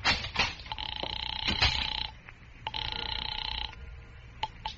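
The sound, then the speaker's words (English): A telephone rings on the line in two steady, buzzy bursts separated by a short pause, heard through a receiver with some low background noise and faint clicks; no one speaks. “It's ringing now.”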